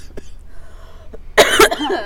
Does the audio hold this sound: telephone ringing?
no